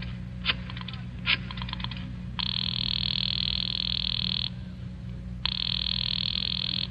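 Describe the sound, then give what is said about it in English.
A telephone call being placed: two short bursts of rapid clicking, like a number being dialed, then a steady, bright ringing tone that sounds for about two seconds, pauses, and rings again. No voices. “I decided to phone him.”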